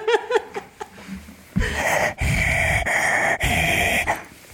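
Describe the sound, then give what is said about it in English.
A few short voiced, giggly sounds give way to loud, exaggerated heavy breathing, long rasping breaths in a steady rhythm, each separated by a brief pause. “They seem to think I'm listening to softcore heavy breathing.”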